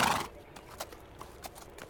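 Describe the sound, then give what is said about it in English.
A horse, freed of its saddle and bags, trots away into the wild: a short breathy burst at the start followed by a handful of soft, evenly spaced hoof clops on the ground, fairly faint, with no voices. “The horse heads back into the wild, as if to immediately shed its former owner's hold over it.”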